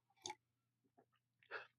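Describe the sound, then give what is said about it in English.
A quick sip of a drink: a soft slurping burst, a few small wet mouth clicks, then a second gulping swallow. Quiet and brief, with no talking. “Let me get a quick sip here.”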